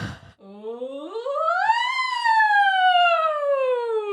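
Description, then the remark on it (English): A single voice does a vocal siren warm-up, sliding smoothly from a low pitch up to a high one, then gliding slowly back down in one sustained tone. “So you sound like a siren. You start down low and you go up high and you go back down.”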